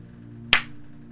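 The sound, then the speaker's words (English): A single sharp hand clap cracks out once, bright and sudden, then fades quickly over a steady low electrical hum, with no voices. “That made me jump for a second. What, to clap?”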